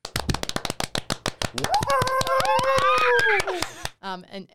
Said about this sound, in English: And this is where we do the applause. I feel like I have to explain this every single time.